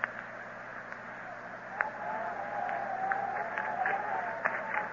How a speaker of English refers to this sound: The wind is beginning, Carlos. That'll soon bring the rain, won't it?